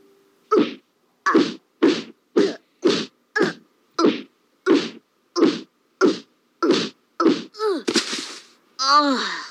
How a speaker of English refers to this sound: But yes, then Bart gets his first beating, which every drawing of Bart's face during these punches here in this next clip is pretty great.